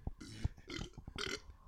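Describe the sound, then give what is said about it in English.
A long, gravelly burp rumbles out, rough and croaking with a few choppy bursts, lasting nearly two seconds with no talking over it. “I burped a story.”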